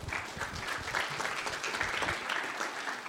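A conference audience applauds steadily for about three seconds as a speaker takes the stage to give a talk, many hands clapping in a dense, even patter with no voices standing out.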